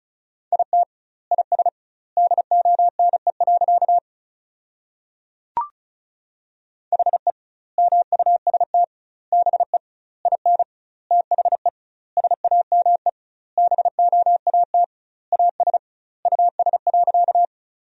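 Morse code sent fast at about 35 words per minute: a steady mid-pitched tone keyed in quick dots and dashes, sending sentences built from the top 500 words with doubled word spacing, with clear pauses between words, plus one sharp click partway through.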